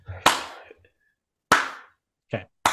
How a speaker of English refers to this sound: Clap a bunch of times.